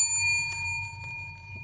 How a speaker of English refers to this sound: The word of the day today is indicated by the bell.